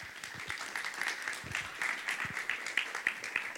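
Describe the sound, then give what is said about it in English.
An audience applauds steadily for a few seconds to welcome a speaker being brought up, a dense wash of many hands clapping at once, with a few sharper individual claps standing out. No one speaks over it. “so let's give her a big clap.”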